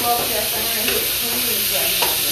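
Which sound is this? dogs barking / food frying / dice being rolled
food frying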